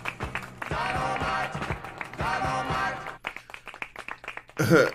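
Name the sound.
clapping sound effect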